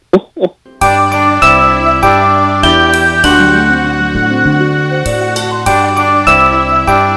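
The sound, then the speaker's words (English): A brief voice is followed by a loud, bright rendition of the Jingle Bells song, with jingling sleigh bells over a full, steady musical arrangement that plays continuously to the end. “So on Thursday, I know you're going to hear probably this. Ring! Info bells!”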